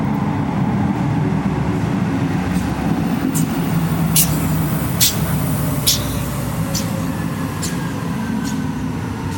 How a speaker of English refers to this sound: All right, nice train. Nice train, yeah.